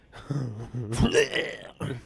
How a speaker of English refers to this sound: I'm the one burping. Huh? I'm the one burping.